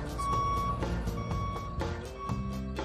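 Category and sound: vehicle, garbage truck reversing beeps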